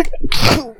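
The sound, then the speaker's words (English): A single sharp sneeze, close and loud, with a brief intake of breath before a bright burst that trails off quickly. No talking. “Bless you.”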